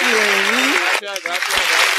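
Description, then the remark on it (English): A burst of crowd applause sound effect marking the NBA season's return, dense and steady for two seconds, with whooping, cheering voices rising over the clapping. “All right, so, you know, we give the applause a 1-2 time.”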